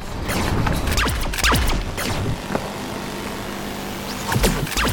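Drones whir and whine in a dense, continuous mechanical clatter, their pitch sweeping up and down as they fly past, assaulting the Admiral's troops during a battle. No voices are heard.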